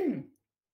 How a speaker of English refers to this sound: So, that cough burned. I know.